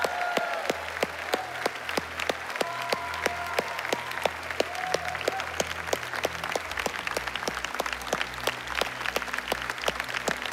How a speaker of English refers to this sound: And guys, yeah, let's cheer on these people that serve for the whole weekend.